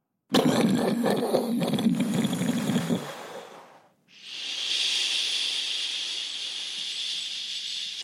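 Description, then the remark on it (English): Heavy, soaking rain: a dense, rumbling downpour for about three seconds, a brief lull, then a smooth, steady bright hiss of rain that continues to the end. No one speaks. “Oh, soaking rain again.”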